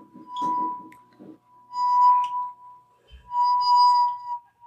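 A wet finger circles a wine glass rim, drawing out a steady, pure ringing tone that swells and fades in waves, with some soft rubbing noise near the start.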